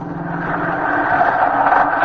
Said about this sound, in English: Ah, the bus.